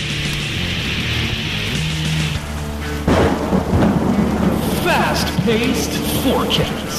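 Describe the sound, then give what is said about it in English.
A thunderstorm sound effect: steady hissing rain, then a sudden loud crack of thunder about halfway through that rumbles on over the downpour, with muffled voices faintly underneath. “Sounds like he made it rain in here.”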